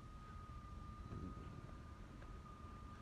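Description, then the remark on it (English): A car rolls by on a street in St. Louis on a cold day, a low, steady rumble that swells slightly midway, fairly faint and blended with outdoor wind noise; no one speaks. “It's just another car coming.”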